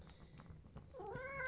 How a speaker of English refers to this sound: If you can hear shuffling and scrabbling and various sort of weird noises, that's probably the cat. It is.